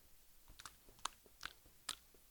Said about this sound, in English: That's what it sounds like when I chew gum. I can't help it.